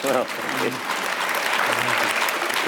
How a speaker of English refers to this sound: Yes, well clapped there, ladies and gentlemen.